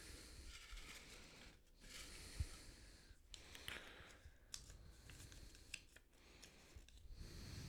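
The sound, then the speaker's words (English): Heavy breathing into a microphone: a steady series of rushing, breathy gusts with brief pauses between them, noisy, with no one talking. “Big old breathing in the microphone.”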